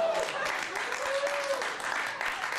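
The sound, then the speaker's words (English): A crowd applauds steadily, dense clapping filling the whole clip at a fairly loud, even level, with a faint whistle or cheer rising briefly underneath. “This is a perfect time to applaud.”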